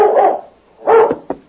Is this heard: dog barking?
yes